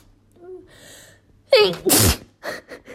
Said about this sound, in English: Oh, I need to sneeze.